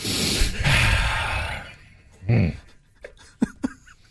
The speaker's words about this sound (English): So you're breathing rather heavily. And now that you're trying not to breathe heavily, it makes it worse.